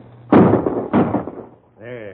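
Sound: rifle shot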